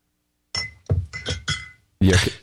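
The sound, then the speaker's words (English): A glass scotch bottle knocks and clinks against a hard surface several times in quick, uneven succession, with a ringing tone on each hit and a heavier final clunk. “Did you just drop your bottle of scotch? No, it's banging a... It's your bottle of scotch.”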